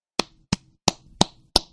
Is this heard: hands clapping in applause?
yes